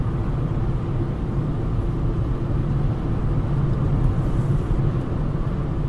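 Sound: car driving on road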